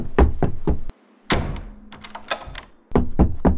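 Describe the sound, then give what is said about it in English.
A door thuds shut with a heavy close, followed by a series of small metallic clicks and rattles as it is locked, framed by a few dull knocking thumps before and after. “Make sure the door is locked.”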